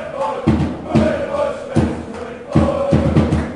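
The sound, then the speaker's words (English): Football fans in a stadium cheer and chant, urging their team toward a late winner with about four minutes of the match left; a steady roar of crowd noise punctuated by rhythmic low thumps, like drumbeats or stamping, every half second or so. “I'm sure you can hear the fanatics just down in front of us cheering the boys on, urging them to try and get that late winner.”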